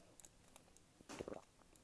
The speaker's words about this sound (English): I'm going to take a sip.